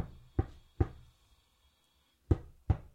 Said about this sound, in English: Okay, I'm going to knock. I'm just going to do it, okay?